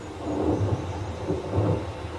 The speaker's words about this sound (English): It seems there's a storm coming. Funny, I don't recall there being a mention of that in the weather forecast.